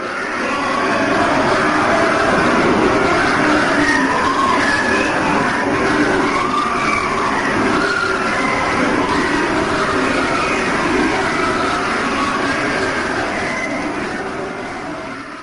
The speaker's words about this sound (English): They only got about 17 seconds of audio before the microphone melted, but it was 17 horrifying seconds of the screams of the damned. 17 seconds, huh? Of the hell. This is part of the 17 second audio recording in the hole.